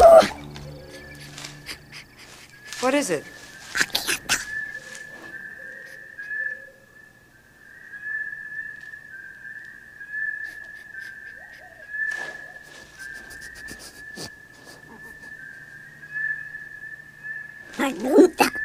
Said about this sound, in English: Wicket senses danger in the forest. The music drops out, and we get nothing but this repeating, whooping bird cry. Almost sounds like an organic alarm.